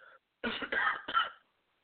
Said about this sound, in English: Ah. All right, again, man, I appreciate everyone listening to the show and bearing with me here with a bad throat, bad cough. I'm trying my best to power through here on the anniversary show.